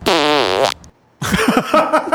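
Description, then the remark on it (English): A loud, drawn-out fart with a buzzing, wavering tone that tapers off near the end, followed by a short silence and then people talking and reacting. “Listen to the ending of this fart.”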